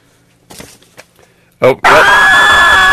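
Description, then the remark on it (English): A woman's scream played from a soundboard bursts in abruptly and holds loud, shrill and sustained to the end, after a few faint breathy sounds and a brief sharp gasp. “Yes, cue female scream from Stu's soundboard or the Dalek talking about Stork's hair.”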